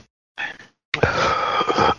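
coughing

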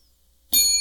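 bell being rung

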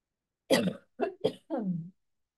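coughing

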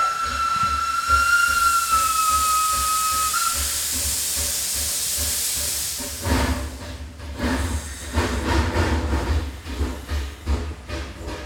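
train sound effect

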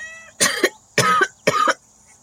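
human coughing

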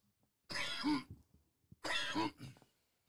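coughing fit

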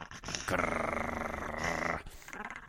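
growling

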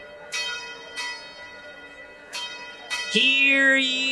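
church bell ringing

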